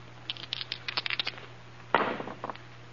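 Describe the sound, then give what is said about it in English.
Dice rattle in a series of quick, light clicks, then clatter down in a sharper burst and skitter to a stop with a couple of final taps, over a low steady hum. The dice are rolled to settle a bet and come up eleven. “Roll the dice.”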